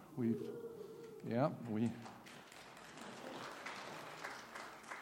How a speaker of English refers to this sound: That gets applause today, in today's day and age, right? Yeah, that's right. Anytime it's been that long.